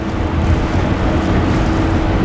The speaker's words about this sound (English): But before Blaza could doze off, the roar of an engine catches his attention.